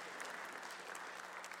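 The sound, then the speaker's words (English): An audience applauds steadily for the speaker's granddaughter, a dense wash of clapping hands that stays loud and even for a couple of seconds without any voices on top. “And you can clap for her too, or else she's going to feel, yeah.”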